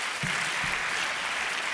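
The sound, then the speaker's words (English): An audience claps their hands in a steady, dense wash of applause, many hands overlapping into a continuous crackling roar with a couple of brief low thumps near the start. “Clap your hands.”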